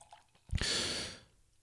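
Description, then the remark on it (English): Cold beer pours into a glass in one short gush: a soft thud, then a loud foamy hiss lasting under a second that quickly fades. No one talks. “but I got my beer, so let me just pour the sucker in.”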